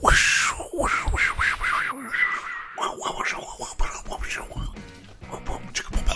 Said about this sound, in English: It's the static. It's the music. It's the intro music. Okay. It's all the scatting, the mouth noises.